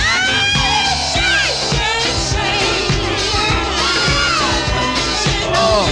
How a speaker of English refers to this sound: Yeah, I think he yelled. He's like, I feel better now.